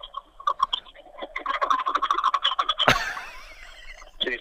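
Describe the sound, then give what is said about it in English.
A smoking two-stroke boat outboard engine on a boat in Pensacola Bay, started up and heard over a phone line on speaker, thin and tinny, sputtering in uneven choppy bursts, then a sudden sharp pop followed by a rougher, steadier churning. “Can you start your engine up so we can actually prove to people that you're actually on a boat in Pensacola Bay?”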